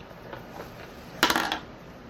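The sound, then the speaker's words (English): A d20 die clatters briefly across a hard tabletop as it is rolled for initiative, a quick burst of sharp bright clicks that tumble and settle within half a second, then quiet room tone. “So go ahead and roll me a d20 plus your initiative modifier.”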